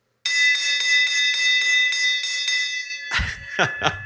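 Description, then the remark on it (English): A victory bell rings loudly, struck rapidly about a dozen times in a steady rhythm with a shimmering metallic ring, then a few short knocks and clatter as it stops. “So there is that beautiful victory bell, because I totally, totally agree.”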